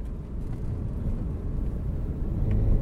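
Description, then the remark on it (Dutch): Steady low rumble of a car's interior as a reporter drives on Thursday morning to the village of Ruinerwold, a constant engine and road drone that swells slightly toward the end, with no voices. “zit verslaggever Sander Dekker opnieuw in de auto naar Ruinerwold”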